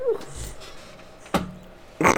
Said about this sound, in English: Dog's dreaming. Dog's dreaming, man. She's getting old.